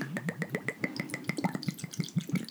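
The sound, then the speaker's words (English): Vodka glugs steadily from a bottle into a glass, a quick rhythmic series of gurgling pulses, lasting a couple of seconds with no talking. “Nice pour, my friend.”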